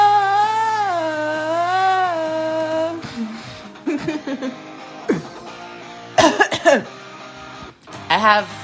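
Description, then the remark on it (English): A wavering, sustained sung note fades out, followed by several short, rough throat-clearing rasps in uneven bursts, the loudest pair coming near the end. “I have a frog in my throat.”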